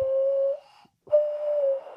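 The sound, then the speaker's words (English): A hollow, breathy hand whistle, its notes changed by lifting different fingers, holds one steady low note, breaks off briefly, then returns on a slightly higher note. It is fairly loud, with no talking. “There are people who can like play songs like that. Like you can get different notes out of it if you lift up different fingers.”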